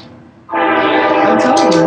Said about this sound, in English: Man, that is really loud, that time. The train.